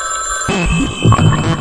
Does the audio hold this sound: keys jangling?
no